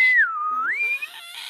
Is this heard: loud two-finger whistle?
yes